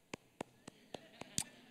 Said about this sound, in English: Insert golf clap.